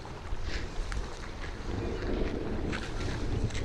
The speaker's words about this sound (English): A thunderstorm rolls in.